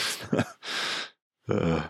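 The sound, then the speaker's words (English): A breathy yawn: a sharp inhale, a long airy exhale, then a short pause before a drawn-out, voiced groan that trails off. “I think I'm going to say I'm yawning so much just because the movie was so boring.”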